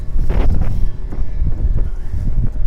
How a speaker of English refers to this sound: Well, it's windy right now.